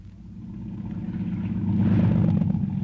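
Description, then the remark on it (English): A boat engine runs with a steady, low droning rumble and a faint mechanical hum above it, growing slightly louder over a few seconds, with no voices, as the boat reaches a lobster float before the engine is shut off. “There's our lobster float, Hod. I shut off the engine.”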